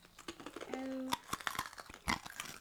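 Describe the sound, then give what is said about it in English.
Crunching on a crunchy roasted corn (maize) snack, essentially corn nuts: a series of sharp, brittle crunches at an irregular chewing rhythm, with a brief humming tone partway through. “ASMR crunching.”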